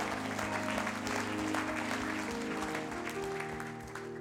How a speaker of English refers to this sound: Clap your hands unto the Lord, all you people.